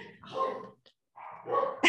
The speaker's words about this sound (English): You have dogs in the background, and you know what? Here on this podcast, we love animals, so let them bark.